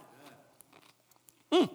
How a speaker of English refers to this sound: Honest to goodness, I can't tell you the number of times that I stand up here and chew on the cracker trying to remember the bitterness.